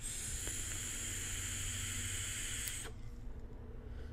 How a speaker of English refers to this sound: So what I'm going to do is turn down the airflow. So when I have the airflow full open, it's just that swooshy sound that you're used to from an Aspire Atlantis.